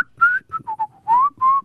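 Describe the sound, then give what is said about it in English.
A person whistles a short, lilting tune, a series of clear pitched notes that rise and fall, with a few quick short notes between longer sustained ones, and no talking. “Swing that stick over your shoulder and you just whistle on your way.”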